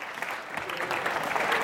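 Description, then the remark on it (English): An audience at the Mill Sunday School claps steadily as a round of applause to St. Patrick on St. Paddy's Day, a dense wash of many hands applauding at once, sustained for the whole moment with no voices standing out. “So a round of applause to St. Paddy's, the real one.”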